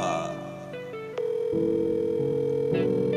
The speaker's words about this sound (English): Pick up the phone.